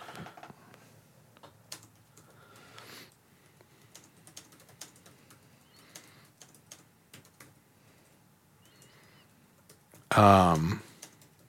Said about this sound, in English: I suck at typing right now.